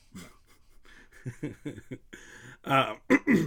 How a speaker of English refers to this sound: gotta clear my throat.